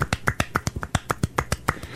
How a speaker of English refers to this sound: That's me clapping, you guys. It makes like a weird water noise.